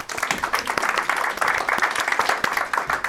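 Steady applause from a crowd, dense overlapping claps filling the whole stretch at a fairly loud, even level with no talking over it.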